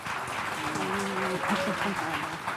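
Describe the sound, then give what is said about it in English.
An audience applauds after a list of names is read out, in a steady, dense wash of clapping that lasts the whole clip, with a voice or two audible over it partway through. “The audience clapped.”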